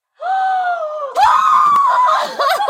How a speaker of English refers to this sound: I just yelled in your face.